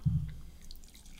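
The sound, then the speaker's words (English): Dew Baja Blast soda pours into a glass: a short, low glugging splash at the start, then faint fizzing and trickling. Quiet, with no voices. “But let's pour some dew. Let's pour some dew while we talk about it.”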